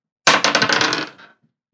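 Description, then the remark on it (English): Dice rolled for a wisdom check clatter across a hard surface in a quick burst of sharp, bright rattling clicks that bounce several times, then skitter and settle within about a second, landing on 21. No voices are heard. “You roll, actually, first roll a wisdom check.”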